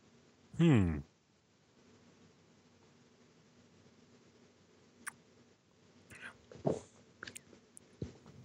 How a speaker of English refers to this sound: All right. Well, you can give it a little sip then. Try it out.